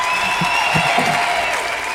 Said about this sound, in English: This is part of the cover. This is a cover of the other guy's crowd clapping. Of the original crowd.